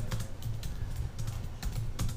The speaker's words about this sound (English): This nigga's typing.